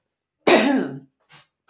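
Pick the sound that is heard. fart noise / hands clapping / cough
cough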